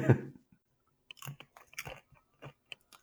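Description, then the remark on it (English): Someone munching food, with a loud opening bite followed by irregular crunchy chewing sounds and short wet clicks, no talking. “What are you munching on there, buddy?”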